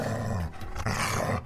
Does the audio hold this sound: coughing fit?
no